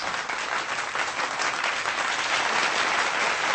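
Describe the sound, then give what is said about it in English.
Steady, dense applause from a studio audience, loud and continuous throughout, with a few scattered cheers rising out of the clapping. “That's heavy studio audience. Applause and sparse cheers.”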